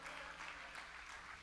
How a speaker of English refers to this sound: Somebody clap their hands for the African-American church. Unashamedly, without embarrassment.